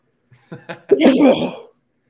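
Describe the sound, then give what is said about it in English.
A single loud sneeze, preceded by a few short catching breaths before the explosive burst, then silence. “One sec. I think I got a sneeze.”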